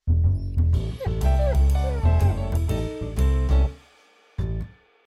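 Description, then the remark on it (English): A dog lets out a long, squeaky yawn, its whiny voice sliding up and down in pitch, fairly loud, ending with a short final squeak after a brief pause. “Yes, it is yawning dog time, because that's how we start every show.”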